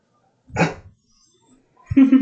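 dog barking

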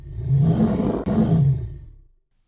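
dragon roar

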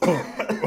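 coughing

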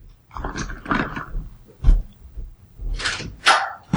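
dog barking

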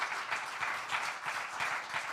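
audience applauding

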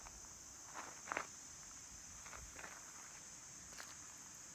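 footsteps walking outdoors

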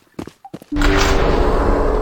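door opening

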